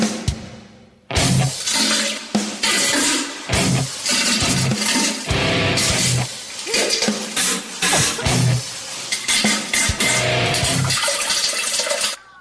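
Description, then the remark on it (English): A loud, dense metal-style track built from toilet flushes and rushing water noise, chopped into driving rhythmic bursts with harsh, distorted textures and brief gaps between hits. “I don't know if I like diarrhea metal as much.”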